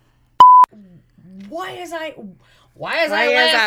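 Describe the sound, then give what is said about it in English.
A phone set to Do Not Disturb still rings: a single short electronic tone beeps once, clear and fairly loud, then people talk afterward. “I put it on Do Not Disturb, and it's still ringing.”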